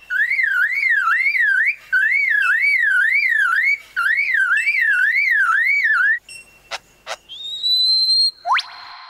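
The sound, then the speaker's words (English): A lyrebird mimics a car alarm with loud, rapidly warbling siren-like whoops in repeated bursts, then shifts to sharp clicks and a rising electronic tone, with no talking. “And that's a car alarm.”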